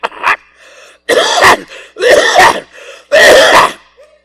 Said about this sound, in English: So you're on a plane or you're in a closed environment, people coughing.